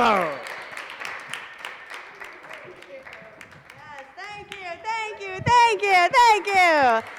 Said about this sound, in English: Start clapping right now. Get real excited. One of the best. Start, keep it going. Keep clapping.